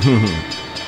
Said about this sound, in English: do I have the train drop on here? Yeah.